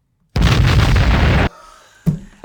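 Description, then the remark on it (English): A loud cannon blast sound effect played from a soundboard roars for about a second and then cuts off abruptly, leaving a faint rumble before a shorter, softer thump near the end. No one speaks. “I adjusted the soundboard. Wrong key, bro. I fixed it. What was that? It was a cannon or something?”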